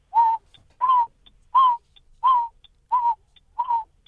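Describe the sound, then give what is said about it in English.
A person imitates the Narina Trogon's call with six soft, low hoots at a steady, even pace, each a short breathy note with a slight downward slur, clear and alone with no talking. “So what does the Narina Trogon sound like?”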